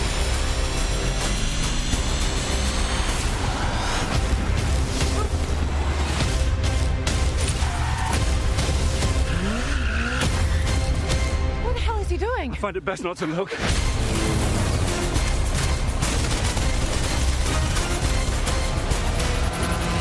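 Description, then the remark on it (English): Heavy booming explosions and rumbling crashes from a Mission Impossible action movie clip, mixed with its loud, dense orchestral music, with voices briefly speaking over the din and a sudden short dropout near the middle. “You can hear explosions, so you know it's action-packed.”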